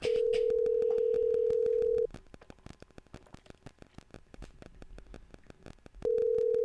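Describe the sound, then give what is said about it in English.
A steady telephone ringback tone on an outgoing call to a man's phone buzzes for about two seconds, pauses through a stretch of faint crackling line noise, then starts ringing again at the end, loud. “Dang. It just ring.”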